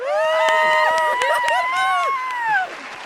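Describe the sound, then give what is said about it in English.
A short burst of crowd cheering played as a round of applause for the cameraman, with loud whoops and hollers rising over a few scattered claps, like a canned applause effect, ending abruptly after about three seconds. “Round of applause for the cameraman.”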